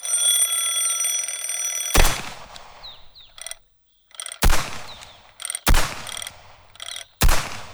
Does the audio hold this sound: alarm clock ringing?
yes